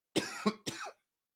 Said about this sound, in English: Excuse me, got a little bit of a cough here.